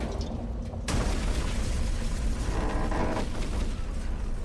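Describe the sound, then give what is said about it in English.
An RPG rocket explosion as the rocket hits beside a Hummer and knocks it onto its side: a sudden, sharp blast bursts out of a low rumble and gives way to several seconds of loud, dense roaring noise with scattered crackles. No one speaks. “I ducked down as the rocket hit somewhere to our left, knocking us onto our side.”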